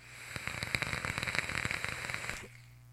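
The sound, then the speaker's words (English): A dense ASMR crackling of rapid irregular pops and snaps, steady for about two seconds before cutting off abruptly and leaving a faint low hum. No one speaks. “That crackle is next level.”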